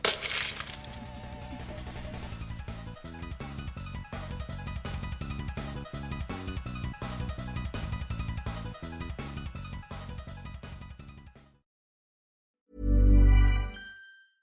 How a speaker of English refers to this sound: So basically, we have to throw each other. We have to throw our glasses at each other. Yeah. So cheers. Ready? So 1, 2, 3. Cheers.